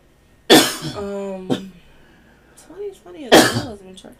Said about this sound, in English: Come on with the coughing. I know. Come on, coronavirus.